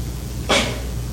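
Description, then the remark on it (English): A single short sneeze from someone in an audience bursts out, a quick breathy blast over a low steady room hum, with no talking around it. “God bless you.”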